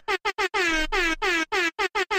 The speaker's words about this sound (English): Are we gonna have to bust out the air horns? I think it's time for the air horns.